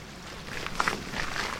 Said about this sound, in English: Water comes down. Get this gate over.